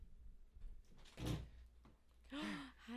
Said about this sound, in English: Are they knocking? I don't know.